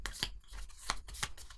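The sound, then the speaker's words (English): Playing cards being shuffled, a soft continuous papery riffle punctuated by three or four sharper snapping flicks, fairly quiet, with no one talking. “I'm shuffling my cards.”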